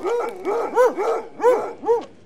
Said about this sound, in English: I'm getting reports done, Inspector. Why is the General's hounds in here jumping over me?